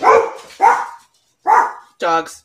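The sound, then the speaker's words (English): A dog barks four times, loud and sharp, in two quick pairs separated by a short pause, the last bark more drawn out and yelping. “Dogs.”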